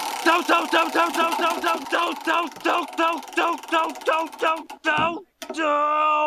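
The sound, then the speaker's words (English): A prize wheel spins with a steady run of bright, pitched clicking ticks, then a quick downward swoop and a sustained ringing tone as it settles. No one talks over it. “And to do that, we're going to need that wheel of random. Let's give it a spin to see which season we're in.”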